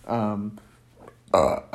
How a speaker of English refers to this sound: God, I don't know why I burp so much in this podcast. Maybe it's because if you talk really fast for a really long time and you get your lungs moving and whatever, maybe it just makes you want to burp.